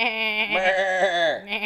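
A sheep gives a loud, quavering bleat lasting over a second, then a second bleat begins just as the sound cuts off.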